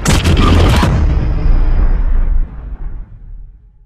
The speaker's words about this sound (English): Wow, there's a lot of orange in this marketing. There's a lot of orange in the trailer, the explosion of, I imagine, of the atomic bomb.